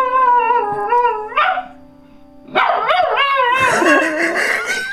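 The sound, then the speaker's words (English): A dog, alone at home, barks and whimpers excitedly in two long, loud bursts of wavering, high-pitched whines and yelps, separated by a brief pause, with no one talking. “Got himself all riled up. He got himself all riled up. I love dogs.”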